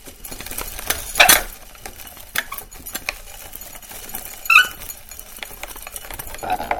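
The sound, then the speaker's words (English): A hand grain flaker, the flick-flock, squeaks as it is worked in a kitchen: a few sharp, high-pitched squeaks at irregular intervals over a steady scraping, clattering mechanical noise, with no one speaking. “That's the squeaking of the flick-flock.”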